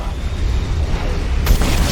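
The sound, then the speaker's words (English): Video game missiles exploding against a satellite: a loud, continuous low rumble of booms, then a sharp, bright blast bursting in near the end. No one speaks. “Let's try shooting missiles at the satellite.”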